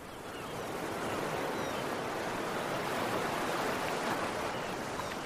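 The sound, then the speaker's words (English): A long, steady exhale with an open mouth makes a loud, rushing hiss that mimics ocean waves. It swells in over the first half-second, then holds for about five seconds with no talking. “Make a sound like the ocean.”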